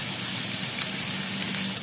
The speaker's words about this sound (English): And let's see how the stuff in the pan's going. Sizzling away nicely. We've got some nice colour happening on one side, so we're going to turn our bacon over.